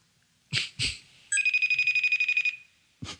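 A FaceTime audio call ringing: a bright electronic trill of rapid pulses lasting about a second, bracketed by a few short, soft clicks before and after, clear with no talking.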